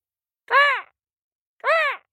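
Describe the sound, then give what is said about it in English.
A storyteller voices Brother Crow, a crow character in a story, giving two drawn-out, nasal caws separated by a pause of about a second. The calls are fairly loud, with nothing else in the background. “It's Brother Crow.”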